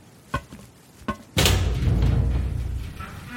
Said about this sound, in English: A thunk and click comes from the wall I think the door might be on, and it opens suddenly, pouring in a crashing wave of sunlight and dust, almost blinding me.